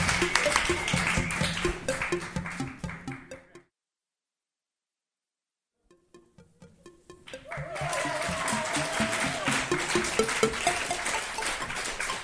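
Steady audience applause on the show Long Night fills the opening seconds, then cuts to silence. Scattered claps return and quickly swell back into full, sustained clapping through to the end.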